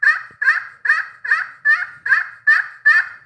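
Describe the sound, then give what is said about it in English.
A glass-over-slate turkey pot call of spalted maple run through a steady series of eight raspy, mid-pitched yelps, evenly spaced and fairly loud, with no talking over them. “It's a pretty good sounding pot call.”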